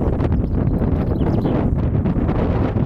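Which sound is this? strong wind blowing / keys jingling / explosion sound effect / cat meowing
strong wind blowing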